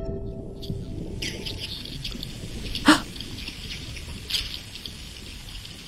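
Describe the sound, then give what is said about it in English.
Underwater hydrophone recording of a shoal of thousands of herring beneath a boat at a fishing trap: a steady hiss of water noise scattered with brief crackling, ticking bursts, one louder sharp pulse standing out midway. “The whole box was just singing of these sounds. It was just incredible. It was just this cacophony of herring.”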